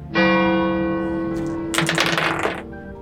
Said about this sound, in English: The sun is high in the sky. Brown wipes sweat off of his face as he stands there waiting. And then the clock tower strikes noon.